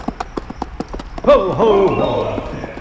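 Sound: horse hooves clip-clopping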